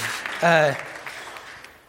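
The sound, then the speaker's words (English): A church audience applauds during an Easter service, a steady wash of clapping that fades slightly over two seconds, with a brief voiced call rising above it early on. “Yeah, thankful for me, but I don't think I need a round of applause.”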